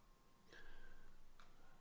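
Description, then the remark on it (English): Two soft, separate key clicks about a second apart, quiet keystrokes on a computer keyboard typing into a YouTube live chat to post a StreamYard join link, with faint background hum and no talking. “So I'm just typing in here in the live chat and YouTube.”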